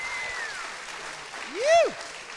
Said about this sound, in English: And a round of applause for the … doing the music tonight.